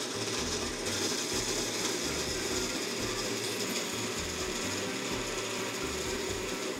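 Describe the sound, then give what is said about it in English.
A blender with its top on runs steadily at high speed blending a drink, a loud, continuous whirring roar with a rhythmic low churning underneath as the contents blend. No one speaks. “Turn this on.”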